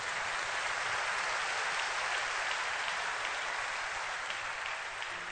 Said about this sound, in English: Your clap is very weak.